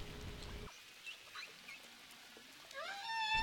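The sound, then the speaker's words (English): Song of male humpback whales: faint, eerie tonal calls drift over a low rumble, then a louder rising whoop with bright harmonic overtones swells at the end. No one speaks. “All the while, we could hear their songs. Only the males sing, and the complex melodies run from 6 to 15 minutes.”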